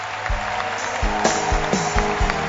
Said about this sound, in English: 3 minutes ago, I told you to clap your hands to thank God because we have ended the service. But I want you to clap your hands now. I don't know why, but it is going to confuse the enemy.